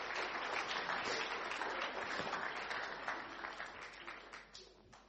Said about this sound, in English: Yay! Fantastic. Can we give our Encounter Youth a round of applause for that?